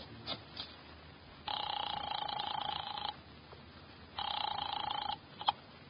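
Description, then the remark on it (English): A few faint clicks at the start as an office phone at a document research laboratory on Vanderbilt is dialed to call Wolf, then it rings twice: two long, buzzing trills separated by a pause, slightly tinny, with no one speaking. “I drove down to the document research laboratory on Vanderbilt and got such a shock that I grabbed the office phone and dialed Wolf at once.”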